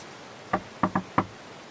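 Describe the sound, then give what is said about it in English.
Four solid knocks on a prison door in an uneven rhythm, one, then a quick pair, then one more, clear against a quiet background with no talking. “Well, let me play Alibaba on this door, eh?”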